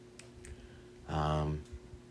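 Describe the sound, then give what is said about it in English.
A few small, sharp button clicks on a 302 audio mixer connected to a microphone, spaced irregularly, a pair early and another pair near the end, with a brief hum-like voiced sound in between and a low background hum throughout. “All the buttons on this 302 work.”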